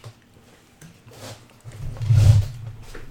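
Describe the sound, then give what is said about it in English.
Someone takes a sip of a drink right into a microphone: soft airy slurping swells into a loud, low, rumbling gulp, then fades, with no talking. “This is me taking a sip of water.”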